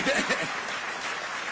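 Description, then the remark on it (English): A round of applause from a crowd for the mayor at an inauguration, a steady dense patter of clapping that continues throughout, with a few voices cheering over it at the start. “But can we give the mayor another round of applause, please?”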